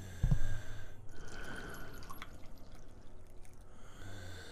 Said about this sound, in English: And I'm going to pour us a cup. I do appreciate you pouring it into a cup for me. That's pretty cool.